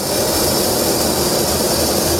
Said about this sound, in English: A South Korean F-15K fighter jet takes off from a runway, followed by an F-35A and a KF-16.